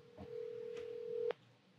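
A phone call connecting: a single steady ringing tone over the line holds for about a second, framed by faint clicks, then cuts off abruptly with a click. No one speaks.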